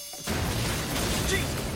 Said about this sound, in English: Nice. I love practical car crashes. It's one of my favorite things. It is the best.